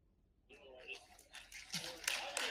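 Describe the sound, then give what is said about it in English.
An audience breaks into applause that starts scattered and quickly swells into dense, steady clapping, with some crowd voices mixed in. “By applause, really.”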